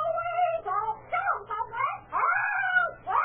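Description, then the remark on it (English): A parrot squawks and shrieks in a loud run of harsh, warbling calls that swoop up and down in pitch, with brief gaps between bursts and no one talking. “It's a parrot. Yeah, it's a parrot.”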